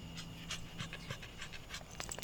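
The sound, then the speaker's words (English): A big dog, just rescued from the forest, pants steadily at a campsite, quick rhythmic breathy huffs repeating through the whole stretch with no talking over it. “It's a dog. A really big dog.”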